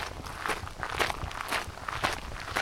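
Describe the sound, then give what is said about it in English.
Footsteps walk at a steady, even pace, about two steps per second, on the walk from Powell Road to Powell Marsh, each a soft scuffing crunch at a moderate level, with no voices. “The walk from Powell Road takes just a minute or two.”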